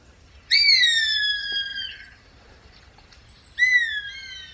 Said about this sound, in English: I'm at the Santa Margarita Ranch in Texas, and we're listening to Greyhawk. Just beautiful, beautiful bird. Let's see if he'll call one more time.